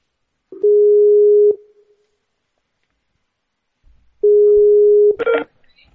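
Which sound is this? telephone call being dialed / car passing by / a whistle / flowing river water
telephone call being dialed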